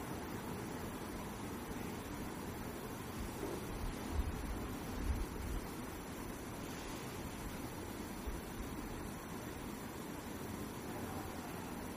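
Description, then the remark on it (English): A steady wash of traffic noise with a low rumble, continuous and fairly even throughout, swelling slightly for a moment as if a vehicle passes. “Now we're going to add the sound of the traffic.”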